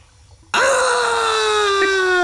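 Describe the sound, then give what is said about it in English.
A person lets out one loud, sustained scream that bursts in after a brief near-silence and holds for nearly two seconds, its pitch sagging slightly as it goes. “…'s turn, and he's still screaming, …!”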